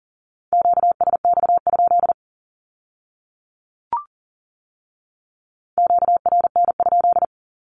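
Fast Morse code at 40 words per minute on a steady mid-pitched tone, a Q-code keyed in quick dots and dashes, sent as two short bursts separated by a pause with a faint click between them.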